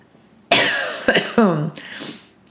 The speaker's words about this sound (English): Throat coughing right on cue there. That was actually just a cough.